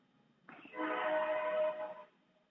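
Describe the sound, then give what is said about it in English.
A train horn blares nearby in one sustained, harmonically rich blast lasting about a second and a half, rising in at the start and cutting off cleanly, with no talking over it. “I heard of the train. Is that your train”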